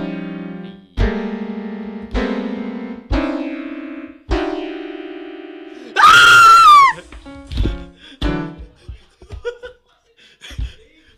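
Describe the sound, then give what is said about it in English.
After a few sustained droning tones, a man suddenly lets out one loud, anguished yell, as if stabbed, lasting about a second, followed by scattered short bursts of laughter. “Why'd you yell? Like you got stabbed.”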